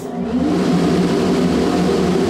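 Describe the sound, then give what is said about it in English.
A clean room air shower at the Jet Propulsion Lab blows hard to remove dust particles from smocks, gloves and hats, making a steady, loud rushing roar with a low droning hum underneath. It stays constant throughout, with no voices. “What we're doing is blowing air to remove any of the dust particles that may have inadvertently landed on our smocks and gloves and hats.”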